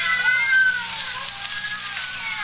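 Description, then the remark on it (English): About half a dozen cats meow and yowl at once, a steady overlapping chorus of high, wavering cries, continuing throughout with no speech. “Yes, some fiend, knowing her deadly fear of cats, has locked her in here with half a dozen of them.”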